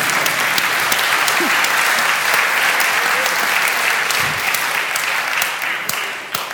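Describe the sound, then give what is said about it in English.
A group including scouts claps steadily after a mock trial skit, a dense crackle of many hands that holds at an even level for several seconds before thinning slightly at the end. “You and a clap, that was good.”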